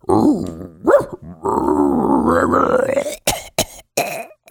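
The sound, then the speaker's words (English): A person vocally imitates a raccoon dog with throaty grunts, growls and a drawn-out strained groan, ending in a few sharp coughing bursts, fairly loud. “Is that how raccoon dogs sound?”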